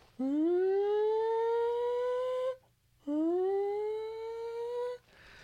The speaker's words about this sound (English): They're testing the sirens, and it like blares through the city. And as kids, we never really paid much attention to it.